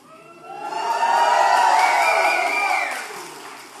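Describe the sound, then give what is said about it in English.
A large audience erupts in cheering and whooping at a speaker's request to cheer for a Bible verse, swelling quickly to a loud sustained roar of many overlapping voices before tapering off after a few seconds. “When you go to a football game or a soccer game, you cheer. Would you please cheer for Revelation 19:6?”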